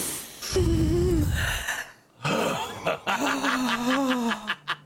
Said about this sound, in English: Just breathe real quick with me. Everybody breathe together. Just deep. Here we go. One in. Here we go.